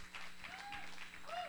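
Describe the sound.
An audience claps in a steady, dense patter of applause as a woman comes up to speak, with a few voices and cheers rising faintly through the noise.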